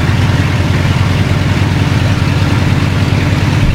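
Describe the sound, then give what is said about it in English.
An aircraft engine idles steadily at 1200 rpm, a loud, continuous low drone with an even pulsing rumble and no change in pitch throughout. “Now it's idling at 1200 revs. I'm just going to bring it up just to make it a little bit smoother.”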